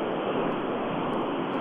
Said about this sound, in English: Do you want to stop the car? The noise is bad with the, in the background.